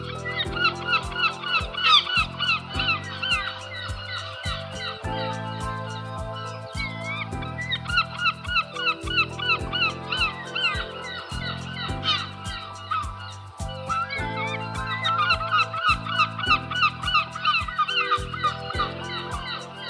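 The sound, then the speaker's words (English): A dense, steady chorus of birds calling over and over outdoors while washing is hung out, with harsh, honking, clucking cries layered on top of each other and sustained at a fairly loud level throughout, with no talking. “So as much as hanging out washing is not an enjoyable pastime, being outside and listening to nature sounds like that is very nice.”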